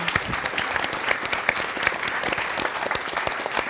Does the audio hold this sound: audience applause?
yes